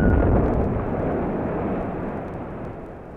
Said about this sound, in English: Certain sounds can be both felt and heard. An explosion at a distance can knock you down.